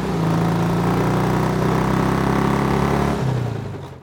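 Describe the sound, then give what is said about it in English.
A red steam bike engine runs steadily with a low, throbbing drone and strong harmonic hum, holding loud for about three seconds before its pitch drops and the sound fades out. “As if my mortal remains were nothing, I was dragged out the back and thrown into the trunk of a red steam bike like a sack of potatoes.”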